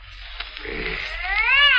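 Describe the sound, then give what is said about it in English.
A cat yowls behind a door inside a house in a long, drawn-out wail that rises and swells louder toward the end, sounding somewhat muffled, as if heard through a barrier, with no voices present. “Oh, I'm sorry. Yes, I lied. It is a cat. Just a cat. But I'll make it be quiet, but go away.”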